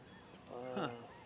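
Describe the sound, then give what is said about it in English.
Faint honking of a big flock of geese flying very high overhead during a hunting outing, a brief call or two rising out of a soft background hiss, thin. “And you guys can't see, but we've got some big fox over us right now, but they are high. Very, very high.”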